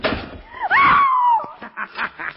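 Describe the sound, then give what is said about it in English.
A door slams shut and is locked, with a loud, abrupt impact, followed by a brief high-pitched squeal and a few softer trailing thumps. “The door is locked and closed upon you, Shadow.”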